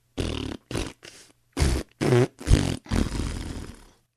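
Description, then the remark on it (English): A pinball machine gives a rapid string of about seven loud, low, rumbling fart-like sounds as the ball hits bumpers or pins, the short blasts giving way to longer, sputtering ones with a wobbling pitch, and the last one trailing off. “Instead, everything was a low-end rumble, and so every time the ball hit a bumper or a pin, every time that it was supposed to make a noise, it farted at you.”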